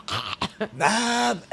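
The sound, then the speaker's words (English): A voice mimics a young girl's allergy-season cough: a few short, harsh, bark-like bursts, then one longer strained, voiced rasp that holds a steady pitch before cutting off. “She had that cough where she was like...”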